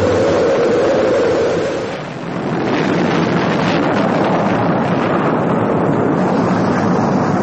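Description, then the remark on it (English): Rocket main engines ignite at launch in a loud, continuous rumbling roar that dips briefly, then swells back into a steady, powerful thunder with no voices. “We've gone for main engine start.”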